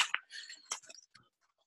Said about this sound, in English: hold on, let me just get some here inside of my Jeff Gordon classic duffel bag.